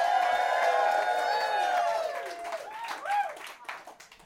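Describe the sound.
A crowd at a live show in Memphis claps and cheers loudly to send a contestant on to the second round, with high whoops and shouted voices riding over a steady wash of applause that fades gradually toward the end.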